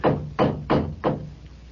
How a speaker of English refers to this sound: The door knocker. It's hideous. Gargoyle. Never mind that. Just knock.